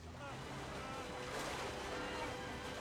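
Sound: rushing river water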